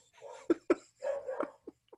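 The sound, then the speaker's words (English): A dog named Slider barks twice in quick succession, then lets out a drawn-out whining yowl followed by two short yips, with no one talking over it. “Who's dog?”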